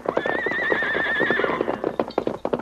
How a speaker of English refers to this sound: It's an army horse, Tonto. Saddled and ready to ride. He's wandered a long way.